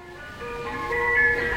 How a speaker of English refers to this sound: The chimes of an ice cream truck will send a ripple of delight through even the iciest hearts.